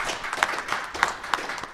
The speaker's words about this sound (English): And so big round of applause for these guys for what they're doing.